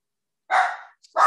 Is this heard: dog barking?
yes